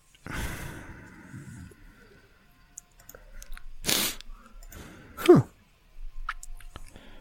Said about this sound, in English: Pardon me. Bless you.